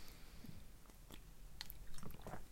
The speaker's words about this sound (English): If you go to the Umbanda center and then, you know, you talk to, let me have a sip of my tea.